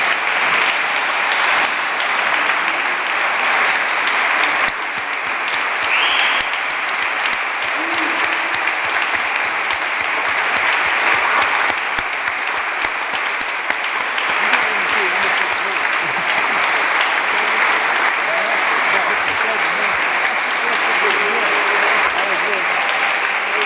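Sustained audience applause for the recipients of the Sam Jones Trailblazers Award, a dense steady clatter of many hands clapping at an even loudness for over twenty seconds, with no one speaking over it.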